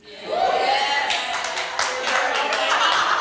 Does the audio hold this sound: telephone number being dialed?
no